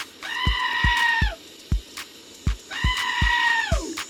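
goat screaming

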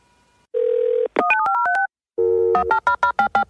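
telephone dial tone

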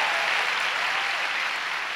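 audience clapping

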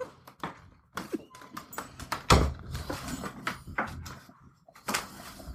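door being opened

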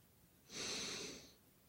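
breathing in through nose

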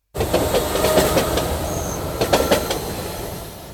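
train running on rails

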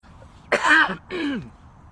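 cough

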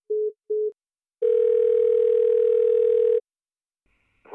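phone call dialing tone

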